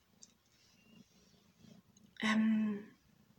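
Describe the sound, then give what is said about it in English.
The kitten Arcturus purrs softly and steadily in a low rhythmic rumble, then lets out one brief, loud, tonal cry near the end. “Little bit of sound effects here by Arcturus, the kitten.”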